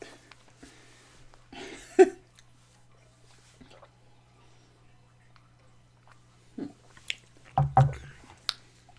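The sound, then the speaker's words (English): Wet sipping sounds from people drinking soda from glasses, a burst near the start, then a cluster of slurps and gulps toward the end, separated by quiet pauses with low background hum. “have another sip”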